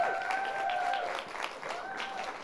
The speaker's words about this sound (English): And so why don't we get him up, give him a massive round of applause.